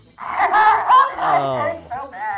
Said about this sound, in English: Hang on, I gotta go blow my nose.